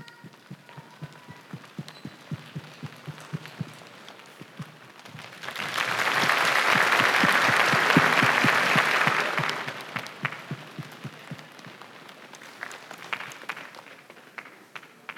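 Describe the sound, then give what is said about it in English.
A crowd in Tulsa, Oklahoma makes rain with their hands, starting as soft scattered pats, swelling into a dense, hissing downpour of clapping and rubbing, then thinning back to sparse taps. “Sounds like a gentle, soft rain.”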